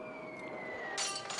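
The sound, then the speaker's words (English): A steady high whine slowly drops in pitch as an aeroplane dives, then cuts into a sudden bright, noisy crash with a shattering, glassy edge. No one speaks. “Love the sound of the aeroplane coming down like a Spitfire. Crashing.”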